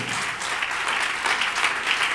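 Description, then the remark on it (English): An audience claps to Jesus, a dense, even wash of many hands with no pauses, fairly loud throughout and no voices standing out. “Can you clap to Jesus?”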